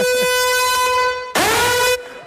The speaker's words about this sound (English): You didn't tell me about a siren that was going to come on. I thought it was the girls.